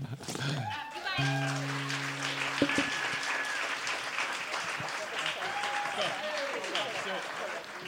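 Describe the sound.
Steady applause from a show audience for a guest, a dense wash of clapping that holds for the whole stretch, with a few whoops and cheering voices rising above it early on.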